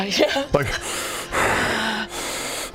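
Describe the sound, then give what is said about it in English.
A person loudly imitates heavy, gasping breathing as done while watching a movie: a quick vocal gasp followed by several long, harsh, airy inhales and exhales in a steady rhythm, with no words spoken. “I'm pretty sure I was movie breathing too.”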